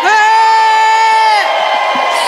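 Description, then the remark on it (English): A loud, sustained shout rings out for over a second, then breaks into a burst of noisy crowd cheering and yelling, energetic. “So shout with me,”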